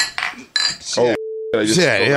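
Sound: glasses clinking together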